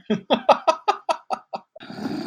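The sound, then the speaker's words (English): A voice imitates snoring with about eight quick, rhythmic guttural snorts in a row, sounding almost like a growl, then a longer raspy breathy hiss trails off at the end. “It was meant to be a snore.”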